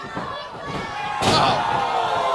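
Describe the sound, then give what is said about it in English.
A loud, heavy slam of a wrestler driven onto a wrestling ring mat by an assisted DDT, one sharp impact about halfway through, with crowd noise and faint voices filling the background. “Innovative move. Assist into the DDT there”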